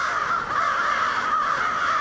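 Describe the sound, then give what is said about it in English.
A dense, continuous chorus of tens of thousands of crows cawing at once at dusk in winter in Auburn, a small city southwest of Syracuse, harsh overlapping calls forming a loud, steady wall of sound with no pauses and no talking. “A river of black wings, the air alive with noisy, hurrying birds flowing down from the sky.”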